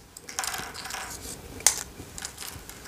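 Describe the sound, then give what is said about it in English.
Three small Cheez-It cheese crackers are snapped in half, a run of dry crackles and light crunches with one sharp, louder crack near the middle as one shatters, and no talking. “Split them in half, technically, you'll have more Cheez-Its.”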